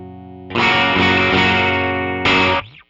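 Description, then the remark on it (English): A heavily distorted electric guitar played through humbucker pickups rings out in thick, saturated chords, a long sustained strum followed by a second sharp hit that cuts off, loud with no talking. “So whereas, like, you know, you play and you're getting a lot more distortion because of a thing with the humbuckers.”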